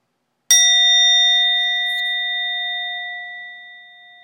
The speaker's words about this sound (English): Listening to the bell.